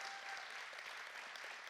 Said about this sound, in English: So if we could just give them a round of applause